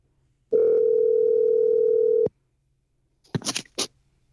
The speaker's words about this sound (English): Dialing Jason Loeliger up in Walnut Creek, California